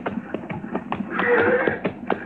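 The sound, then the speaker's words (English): Steady clip-clop of the hooves of branded horses being driven at a walking pace, fairly loud, with a brief higher tonal sound rising midway through the rhythmic hoofbeats. “Granby's brand on those horses.”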